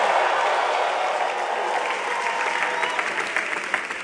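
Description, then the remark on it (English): An audience in a church claps steadily to give praise to the Lord, a dense, even wash of many hands with sharper individual claps poking through near the end, sustained at a fairly loud level throughout. “Somebody give the Lord some clap of it.”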